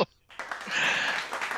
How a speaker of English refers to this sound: You know what? I'm going to clap for you. Thank you.